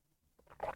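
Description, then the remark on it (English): A short, soft slurping sip of coffee, a breathy rush of air and liquid lasting under half a second after a moment of near silence. No one speaks. “Let me have just another sip of coffee before I get to the show today.”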